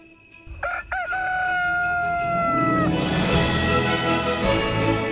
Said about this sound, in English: And just in case you're not there yet, hit that rooster one more time.